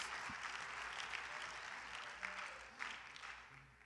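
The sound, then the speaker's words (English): An audience claps their hands to thank God, in steady, dense applause, a broad hiss of many overlapping claps with a few sharper individual smacks standing out, fading slightly toward the end. “If somebody believes that God is still talking, would you clap your hands and lift your voice and thank God for his presence and spirit.”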